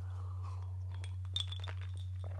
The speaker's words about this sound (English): You're chewing ice. Oh, there's ice. Yeah. I made iced coffee. I'm sure this is not a great audio thing, but I'm chewing on the ice. I have a habit.